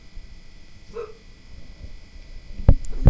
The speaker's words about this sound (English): What are you barking at?